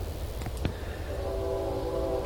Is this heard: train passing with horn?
yes